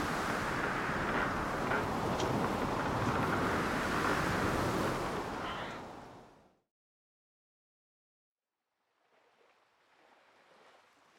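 Loud, roaring crashes of storm-tossed waves in a whirlpool closing in on a small boat churn for about six seconds, break off into silence, then return as a quieter wash of surf. No one speaks.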